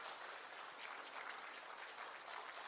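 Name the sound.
audience applauding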